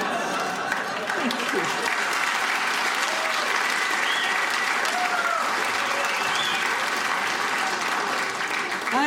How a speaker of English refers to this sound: And that is why a standing ovation is so important in this country, because if you can get that big fat American butt out of his seat, well then you've done something important.